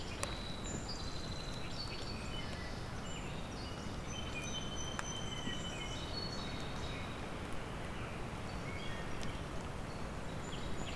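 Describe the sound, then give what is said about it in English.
A black-throated blue warbler sings thin, high notes, woven into a busy chorus of other birds over a steady rushing background noise. “And a black-throated blue.”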